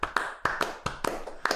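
A short burst of hand clapping, a handful of sharp, uneven claps over about a second and a half, fairly soft, with no voices over them.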